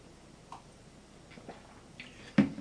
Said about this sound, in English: And let me just have a sip of my tea.